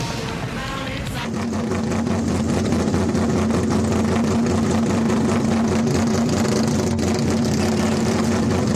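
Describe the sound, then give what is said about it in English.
A car engine rumbles steadily as the car rolls into a parking garage in a scene from the film Ferris Bueller's Day Off, a loud, low drone that swells after the first second and holds without a break, with no talking. “we played that one scene from Ferris Bueller's Day Off when he rolled into the parking garage with the”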